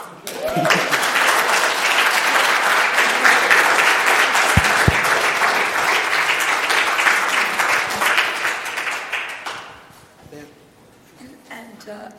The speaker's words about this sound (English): Oh, you can clap.